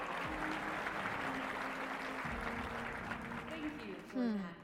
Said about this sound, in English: Head of research and development. Give a round of applause for Audrey Shaw!